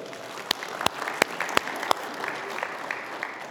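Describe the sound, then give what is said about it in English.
Polite, golf-style applause from a church audience at Steadfast Church: a handful of crisp, separate claps at first, then fading into soft, scattered clapping over a low crowd murmur. Brief and restrained, never building into a full ovation. “Appreciate the PGA clap for that.”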